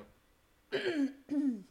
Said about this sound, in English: she's coughing. She's trying to hold it together and maintain the beauty. That's it. It's all right.